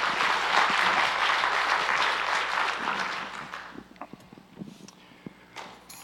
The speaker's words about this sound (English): Amen. How about another hand clap for that worship team?